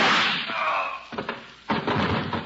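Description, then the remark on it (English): Two loud, sharp gunshots fired through a transom crack out about half a second apart, harsh, with a noisy rushing wash filling the moments before and between them. “Holy smoke. Those shots came through the transom.”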